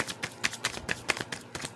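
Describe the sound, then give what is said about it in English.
A deck of cards being shuffled: a quick run of crisp, papery flutters and clicks in an uneven rapid rhythm, fairly soft, with no one speaking. “After this, I'm going to shuffle it two more times.”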